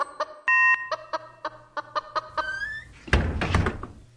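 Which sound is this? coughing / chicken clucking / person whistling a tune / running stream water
chicken clucking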